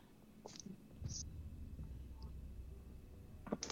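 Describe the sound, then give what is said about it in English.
Dice clatter across a tabletop in a few short, sharp bursts as players roll stealth checks in a tabletop role-playing game, fairly faint, with soft whispering and low murmur underneath. “I just landed on top of the dice.”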